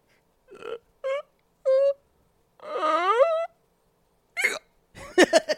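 A person gives a series of sharp, squeaky, fairly loud hiccups, with one stretched into a wavering, whiny sound midway and a quicker cluster at the end.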